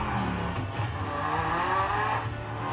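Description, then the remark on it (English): A tuned sport compact car's engine purrs steadily, its smooth humming tone rising and shifting slightly over a few seconds, with no voices present. “Ooh, you hear that rice rocket purr?”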